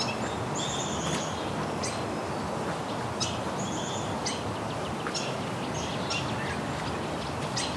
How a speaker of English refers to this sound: Okay, I'm seeing actually dozens of swallows here. Sounds like barn swallows. Looks like there's tree swallows in there too.